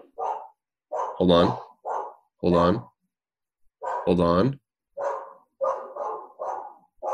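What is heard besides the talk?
dog barking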